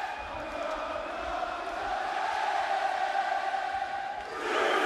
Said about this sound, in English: So the crowd just take over and start singing the song.